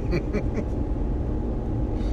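Steady, low droning rumble of road noise inside a moving truck cab, constant in level throughout, with faint muffled voices briefly audible at the start.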